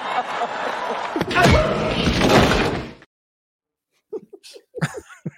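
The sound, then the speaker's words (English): A played recording of the sharp face slap of Chris Rock at the Academy Awards lands amid about three seconds of loud, dense, noisy sound. Silence follows, then a few brief voiced bursts from people talking. “The slap of rock.”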